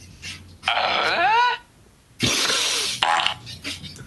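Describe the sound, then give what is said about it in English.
Two novelty phone text message alert tones play back to back: first a squealing, pitch-bending whine lasting about a second, then a loud, harsh, raspy burst like a growl or belch. “If I'm walking around the streets and my phone happens to be off of silent, these are my ringtones.”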